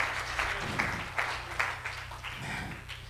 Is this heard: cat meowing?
no